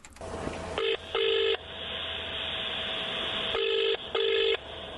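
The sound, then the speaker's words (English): Four loud touch-tone dialing beeps, each with a steady dual-pitch tone, come in two quick pairs separated by a pause, over a continuous line hum with no talking. “without any messing about, mate, just listen to this phone call.”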